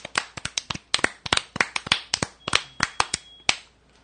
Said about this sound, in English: Dude, 41 points for Mr. Briss. We got to give him a round of applause on that performance.